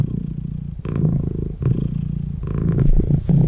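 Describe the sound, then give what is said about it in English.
A cat purrs loudly, a steady low rumbling vibration that swells and dips with each breath, repeating in a regular rhythm with no talking. “It's a cat purring.”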